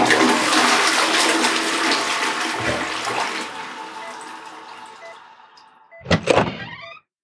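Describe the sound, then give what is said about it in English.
A toilet flushes with a loud, steady rush of water that slowly fades over several seconds, followed by a brief clattering burst at the end. No one speaks. “I hope he washed his hands. Doesn't sound like it.”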